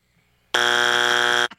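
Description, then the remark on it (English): A loud, harsh game-show buzzer blares in one steady, sustained burst of about a second, rich in buzzy harmonics, then cuts off with a brief tail. “Buzz yourself.”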